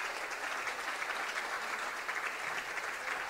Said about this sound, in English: She's getting a nice round of applause from the crowd, working on her own power. She's going to come off the floor.